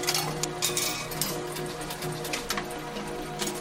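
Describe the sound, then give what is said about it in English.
A steady mechanical whir with a constant hum and a rapid series of soft clicks and ticks from the motor and transmission of a dip and dunk photo booth running, for several seconds. “You can really hear the transmission.”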